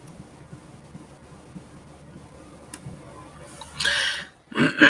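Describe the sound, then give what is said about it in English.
A person clears their throat twice near the end, a rough raspy burst followed by a shorter, louder one, after several seconds of quiet room hiss. “Let me see if I can get all my clear my throat out the way.”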